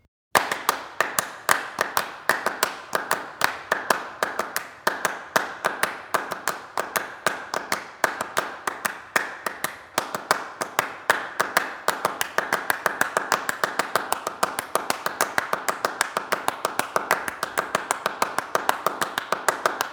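Two sets of hand claps play fast, interlocking rhythmic patterns that shift against each other each measure, closing the loop after 12 measures, sharp dense percussive claps at a steady moderate loudness throughout, with no voices.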